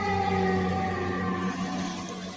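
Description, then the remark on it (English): A siren wails with a steady, sustained tone rich in stacked harmonics, holding loud and nearly level for about two seconds before easing slightly, with no voices over it. “That pick was so bad, the sirens are out.”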